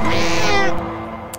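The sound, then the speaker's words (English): A single drawn-out meow from a listener's cat, loud, with a rich, slightly strained tone that fades quickly after it ends; no voices accompany it. “But before we do we have a cat of the week this week?”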